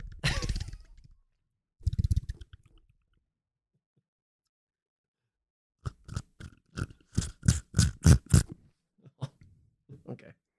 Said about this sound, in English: Sound like you were slurping.